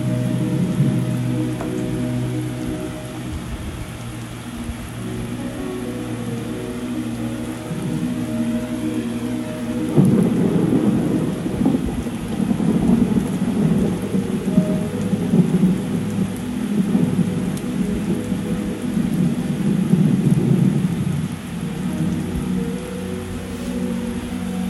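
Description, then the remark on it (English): Heavy rain pours steadily through a thunderstorm while low thunder rumbles underneath, growing louder and rougher about halfway through. No one speaks. “Many storms that I'm going through, that I've been through, and that I will go through. Even while recording this podcast.”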